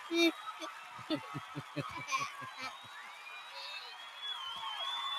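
A crowd cheers in a steady, dense roar, with high whoops and whistles rising over it and a quick run of rhythmic clapping near the start.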